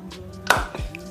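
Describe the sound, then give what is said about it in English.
A single sharp hand clap cracks out of near quiet, followed by a softer low thump a moment later, with no voices. “Get that clap. That clap, yeah.”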